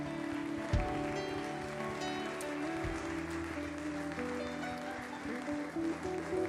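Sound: audience hand clapping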